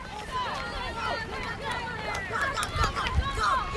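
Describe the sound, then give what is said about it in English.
Pounding footsteps of racers running a race on a hot, sunny day thud irregularly beneath a steady wash of crowd chatter and cheering voices, with a few heavier impacts standing out toward the end. “Listen to the pounding of those feet.”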